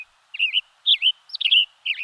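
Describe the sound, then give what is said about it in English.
A western tanager sings four short, burry phrases in quick succession, each a slurred rising-and-falling warble with brief pauses between, heard clearly and alone against a quiet background. “Western Tanagers Are Flashes of Bright Color”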